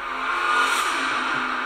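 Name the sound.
race cars speeding past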